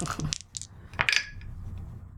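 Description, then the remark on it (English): Dice clatter and tumble across a hard tabletop in a quick burst of sharp clicks, the final knock ringing briefly before settling, the roll landing on 75. No voices accompany the roll. “I can't read what this number is. Oh, cheater dice, 75.”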